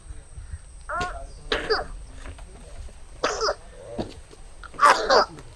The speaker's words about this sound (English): cough is worse. He is now struggling to breathe at all, his fever peaking under the canopy.